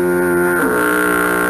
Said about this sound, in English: Absurdly long foghorn. John, please throw that in.